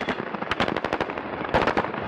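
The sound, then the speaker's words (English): Rapid bursts of gunfire in footage of soldiers in an army vehicle opening fire near a pickup truck in Nuevo Laredo, across the Rio Grande from Laredo, Texas: a quick string of sharp, loud cracks, a short pause, then another burst of shots, with no voices. “And then the soldiers inside begin to open fire.”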